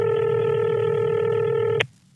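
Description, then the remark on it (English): A telephone keypad tone sounds as radio hosts on Magic 105.3 dial a call: one steady, loud electronic beep held for almost two seconds, then cut off abruptly with a faint click. No one speaks. “Let's call his wife, Charity, here.”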